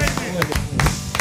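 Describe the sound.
Several sharp, irregular hand claps welcome a guest joining online, ringing out over about a second while people keep talking underneath, the claps fairly loud and uneven in rhythm.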